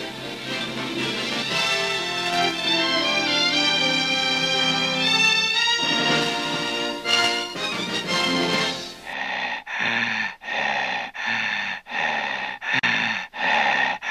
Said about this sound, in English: Hello, it's me, the heavy breather from every horror film you've ever seen. You know me.